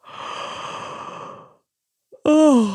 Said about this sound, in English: So the first thing you're going to do is make a great big pretend yawn. Are you ready? Let's hear you yawn.